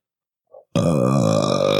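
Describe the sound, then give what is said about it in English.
A loud, sustained burp erupts after a faint short lead-in sound, rumbling on at full volume for over a second with a strained, raspy, vocal tone and no talking. “The new metal unblack metal core? Burp?”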